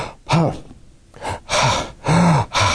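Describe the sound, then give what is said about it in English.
A voice imitates the labored, heavy breathing of a patient with advanced cancer and shortness of breath: a rapid series of loud gasping inhales and exhales, several breaths in quick rhythm with brief pauses between them. “She was breathing really, really hard.”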